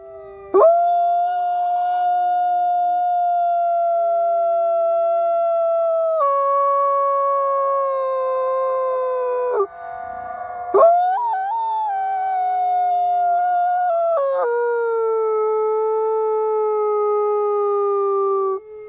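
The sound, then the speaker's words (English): Wolves howl in long, sustained tones that hold steady and slowly slide in pitch, one loud voice from a wolf a few feet from the camera with others layered behind it, continuing for nearly twenty seconds with a brief pause midway, in documentary footage. “now we can see and hear some wolves Alrighty. Howling.”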